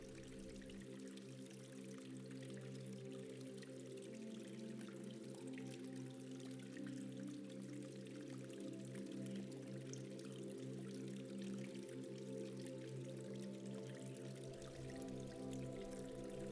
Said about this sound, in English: as the warm mineral waters swirl around you and the steam flows upwards.